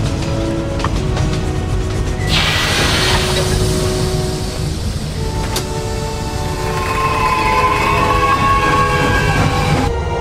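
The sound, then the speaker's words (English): A train rolls steadily along the rails with a loud, continuous rumble, metallic squeals and clanks rising over it, and a hissing surge partway through. No one speaks. “Why Data has to struggle with those train things, I don't know.”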